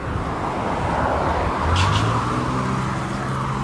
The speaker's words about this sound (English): All you're going to hear is cars and wind, dude.